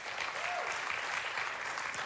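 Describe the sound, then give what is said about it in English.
Steady applause from an audience clapping to show they have seen the movie Forrest Gump, a dense, even wash of many hands clapping at once with no pauses, loud and sustained. “Clap if you've seen the movie Forrest Gump.”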